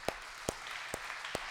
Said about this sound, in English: Man, we applaud you. That's a gift.